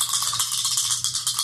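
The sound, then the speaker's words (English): Dice being rolled for a focus-based discipline check rattle and clatter in a quick, steady rhythm of bright clicking taps lasting about a second and a half, with no voices over it. “Okay, so roll... Dice plus 3, okay.”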